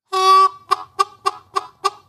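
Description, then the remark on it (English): A harmonica plays one sustained reedy note, then six short, evenly spaced bursts that mimic a clucking chicken. It is fairly loud, and no one speaks. “You know, I thought about the idea, and as I did, I felt kind of chicken.”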